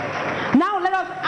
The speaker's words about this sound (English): You believe that? If you believe that, put your hands together once again for our Lord Merci, Jesus.